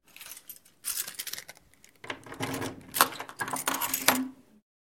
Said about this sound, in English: When I walked back toward the kitchen, I saw that the front door to our apartment was locked from the inside. A couple hours later, I heard the keys at the door.